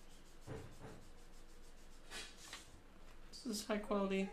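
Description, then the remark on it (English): High-quality, good-stock paper rustles and rubs in a few short, crinkly bursts, then someone briefly starts talking. “This is some high quality paper Jamie's got here. It's good stock.”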